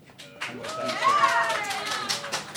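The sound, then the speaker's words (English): An audience claps to vote for a quiz answer, "skateboarding instructor", in a steady, dense patter lasting a couple of seconds, mixed with voices calling out and cheering over the applause. “Clap if you feel that that's the right answer.”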